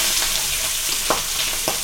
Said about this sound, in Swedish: Är det här smaker det kokta fläsket stekt? Jajamän, det är det. Ja. Ni hör ju hur det fräser på här.